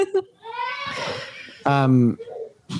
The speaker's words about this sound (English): Sorry, my baby's screaming.